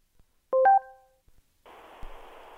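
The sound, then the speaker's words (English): A quick burst of electronic beeping tones, then a steady, tinny hiss of rain falling at a front door, heard through the small speaker of a front-door listening device. The rain continues evenly to the end with no talking. “Well, it's raining, and that's about it.”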